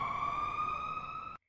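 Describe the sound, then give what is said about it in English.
An ambulance siren holds one steady, piercing tone for over a second, loud, then cuts off abruptly into silence. No voices are present. “An ambulance was called, and she was immediately taken to the emergency ward in the general hospital.”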